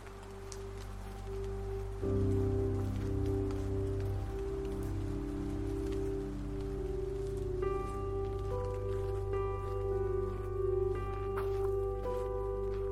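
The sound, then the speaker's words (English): Steady rain patters outdoors during a long-distance walk in a continuous wash of scattered drops, layered under low sustained droning tones and brighter held notes that come in partway through. No one speaks. “This rain is a bitch.”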